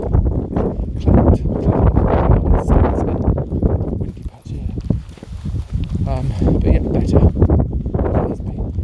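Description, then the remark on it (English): Strong wind roars and buffets the microphone in continuous low gusts on a beach under blue skies, dipping briefly midway before surging again, with a voice faintly talking underneath. “Windy, very windy for here.”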